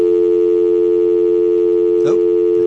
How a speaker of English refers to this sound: Did you lose him? I got dial tone here.